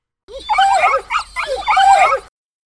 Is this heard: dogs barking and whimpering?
yes